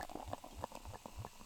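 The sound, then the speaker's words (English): Pure malt beer glugs into a mug in a quick, steady rhythm of bubbling gurgles, fairly quiet, with a faint fizzing hiss underneath and no talking. “I've been failing miserably at this the last couple of episodes, just leaving myself with a mug full of foam, but I think I've done slightly better that time.”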